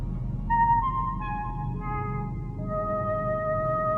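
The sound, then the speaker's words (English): A five-note melody of pure, sustained electronic-sounding tones, each note entering in turn and ringing on over a low, steady rumble, clear, with no voices. “If everything's ready here on the dark side of the moon, play the five tones.”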